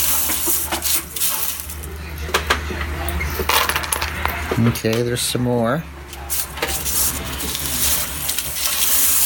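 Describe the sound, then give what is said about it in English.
Hard toasted pumpkin seeds, taken by hand from an oven baking tray, clatter and tick into a Lock & Lock plastic container in quick, uneven bursts, with a brief spoken remark partway through. “I'm going to start putting these into a lock and lock box.”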